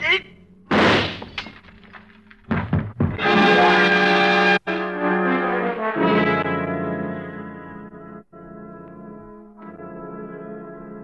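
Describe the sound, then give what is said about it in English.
A drinking glass falls from a man's hand as he stumbles forward and smashes into fragments on a tabletop with a sharp crash and a few quick breaking bursts, then a loud sustained ringing, musical swell carries on after it. “The glass in his hand smashing into fragments on the tabletop by your side as you step back quickly.”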